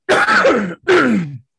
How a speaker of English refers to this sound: I have to excuse my cough as well, by the way.